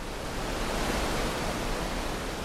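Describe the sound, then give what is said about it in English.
A steady, dense roar of rushing water from the underground falls of Cowhorn Creek, deep underground, continuous, with no pauses or voices over it. “It runs deep underground to these majestic falls.”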